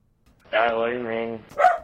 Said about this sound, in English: The text prompt is: a man speaks as birds chirp and dogs bark.